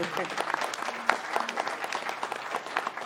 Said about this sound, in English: Round of applause for Michelle.